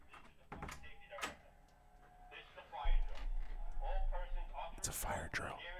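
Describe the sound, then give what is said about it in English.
A door is opened with a few sharp clicks and knocks from the latch and handle, followed by a low rumble of room noise and muffled voices in the background. “Hold on. Let me open the door.”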